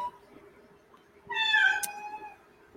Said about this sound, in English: The cats have a lot to say about that.